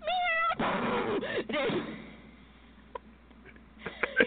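A cat meows loudly, a few drawn-out, wavering cries in the first half and a noisy scuffling burst, then near quiet with a few faint clicks and rustles.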